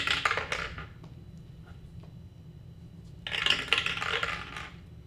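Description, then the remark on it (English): Two bursts of hard clattering, dice rolled with disadvantage tumbling and rattling across a surface, coming up a three and then a one; the first lasts under a second and the second longer, with a low steady hum between them and no talking. “Give me a roll with disadvantage to make it to the door.”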